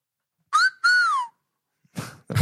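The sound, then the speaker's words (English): A loud two-note catcall whistle: a short upward note, a brief gap, then a longer tone that swoops downward. A couple of rough, noisy bursts follow right after. “It was a cat call.”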